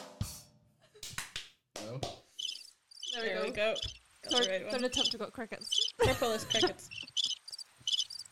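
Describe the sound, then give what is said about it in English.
Rhythmic, high-pitched cricket chirps pulse steadily in short repeated bursts, mixed with wordless vocal sounds and a few sharp clicks near the start. “Third attempt to go crickets.”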